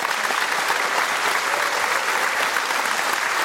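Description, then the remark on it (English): A studio audience applauds steadily, a dense, even wash of clapping hands filling the room at full volume for a few seconds with no voices on top. “A huge round of applause for Simon, please, and all the very best.”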